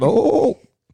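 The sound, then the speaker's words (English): A person makes a loud goat-like bleat imitating Goat Boy from Saturday Night Live: one wavering, nasal cry lasting about half a second before cutting off into silence. “You sounded like Goat Boy.”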